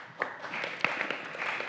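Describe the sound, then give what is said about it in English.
Scattered applause from a small group of about ten people, a handful of soft, uneven claps with a few sharper ones standing out, fairly quiet and with no voices over it. “Thank you for clapping, all 10 of you.”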